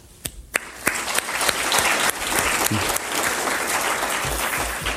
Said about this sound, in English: All of the organizers, I just want to take a second and maybe just give everybody a round of applause who put in the time and effort to make this happen.